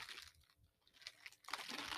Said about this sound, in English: You really like crunching on ice right now, bro. My bad. I just got this. I put this water in the freezer and I just got it out, and it's so damn good.